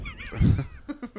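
A donkey brays: a loud, rough, grating honk followed by three shorter, rhythmic wheezing gasps that fade out, with no voices alongside it.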